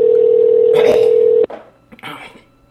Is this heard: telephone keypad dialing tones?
yes